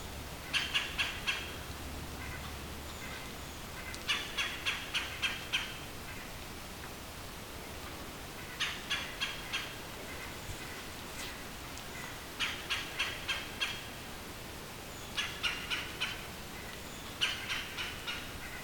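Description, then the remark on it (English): A red-bellied woodpecker calls loudly in short rhythmic bursts of four to six rapid notes, repeating every few seconds over a quiet outdoor background with no talking. “and this red-bellied woodpecker. He's doing his umph-umph thing very loudly.”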